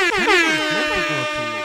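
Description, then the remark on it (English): A loud air horn sound effect blares in overlapping, wavering blasts, harsh and brassy, filling the short burst with a layered, warbling honk. “Where's the air horns?”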